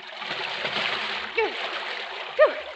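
Water in a swimming pool sloshes and splashes continuously, with two brief louder surges near the end as a swimmer moves through it and comes out. There is no talking.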